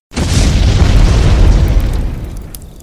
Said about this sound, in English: Okay, as the crew members stand, like, awe-shocked at what you, like, ask, unaware of the situation, the boat crashes.